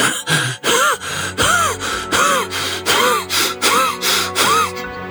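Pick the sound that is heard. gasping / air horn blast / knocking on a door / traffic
gasping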